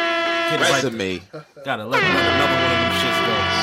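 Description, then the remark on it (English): A voice mimics a blaring air horn: a loud, brassy, sustained honk that briefly dips and bends in pitch, then holds steady to the end. “Let me get my air horns right.”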